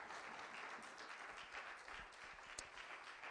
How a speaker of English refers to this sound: You may be seated. Give the Lord a great big clap as you're going down to your seat.